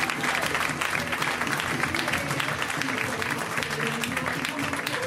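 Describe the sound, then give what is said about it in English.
Steady, loud audience applause at a comedy show as comedian April Richardson is introduced, dense clapping with scattered cheers and whoops rising from the crowd throughout, sustained without pause for several seconds. “Ladies and gentlemen, let's hear it right now for April Richardson. Give it up for April.”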